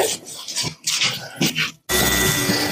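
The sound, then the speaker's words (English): Irregular scraping, squishy bursts give way after a short pause to a tattoo machine's steady, even buzz as someone is tattooed, a constant droning whine that holds at the same pitch until the end. “Wow, there's the sound. You got it. Here we go. Dude, that sounds painful.”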